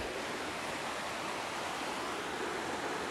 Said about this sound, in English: That is an actual river, because we are at a cabin out here by the river. Nice, serene place.